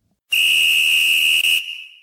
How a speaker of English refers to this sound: sound the whistle. It's time for our 2-minute drill. Just making sure. I sound the whistle, and then I go first, right?